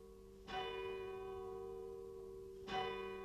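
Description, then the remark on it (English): A deep church bell in the square, sturdy tower of St. Mary's, sounding through the town since 1628, tolls twice for the watch night service as a light rain falls. Each strike comes at about two-second intervals with a sharp onset and a long ringing hum that hangs between strokes, heard clearly with no voices. “Mary's, the bell that's been sounding through the town since 1628 is ringing for the watch night service.”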